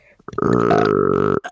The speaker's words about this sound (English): I'm sorry, I have to burp. And then you get real close to the microphone.